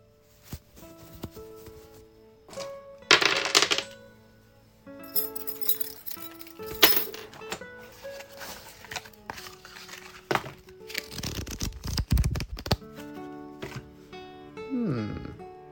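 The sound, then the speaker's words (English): Irregular clattering and clinking as dice and a deck of cards are rummaged out of a drawstring bag, with a few louder rattling bursts between quieter rustles. “Why, but it is a bunch of dice and a deck of cards.”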